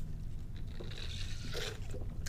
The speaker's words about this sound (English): Hold on, because when that happens, we all sip coffee. When you mess up, go ahead. We got time. Take a sip.